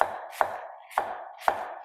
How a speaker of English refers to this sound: Let's finish chopping this little bit that's left.